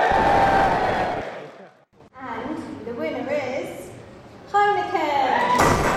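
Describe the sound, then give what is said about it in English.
A loud burst of audience cheering at a 2017 awards ceremony for sustainability in business fills the first second or so, then fades, and a voice speaks over the lingering noise of the crowd. “Give me a cheer if you're up for one of tonight's 19 awards.”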